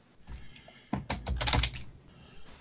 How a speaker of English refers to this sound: Yeah. Come on, wireless keyboard. It's like, oh my god. I'm glad you can't see like how poorly I'm typing.